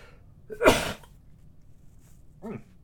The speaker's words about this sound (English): Hang on 1 second. You want to sneeze? I think I'm going to sneeze. Maybe not.